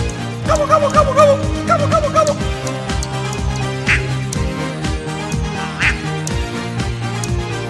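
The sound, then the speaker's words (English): A quick series of nasal duck quacks in the first couple of seconds, followed by a few scattered calls, all set against a dense, steady background of low rumbling noise. “It's the bird calling.”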